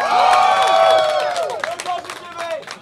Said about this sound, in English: Everyone loves The Command Zone. Round of applause for The Command Zone right now. Go!